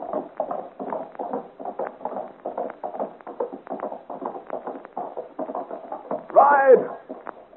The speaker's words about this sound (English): Joel pulls roughly at the horse's bridle and, shouting encouragement to her, gallops out into the darkness of the forest